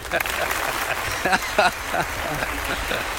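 In-house studio audience applause: a steady, dense wash of clapping lasting the whole stretch, with a couple of brief cheering shouts rising above it midway.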